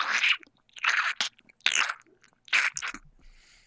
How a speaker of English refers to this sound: In the shallows. That was our footsteps.